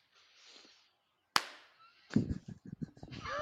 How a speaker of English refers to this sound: Okay, I'm gonna clap. Okay, yeah, let's sync everything up.